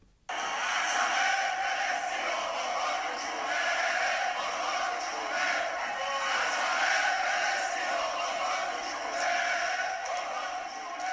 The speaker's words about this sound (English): Yes, that is the crowd in that soccer stadium in the capital of Iran, ignoring an attempt by the regime to get them to engage in the usual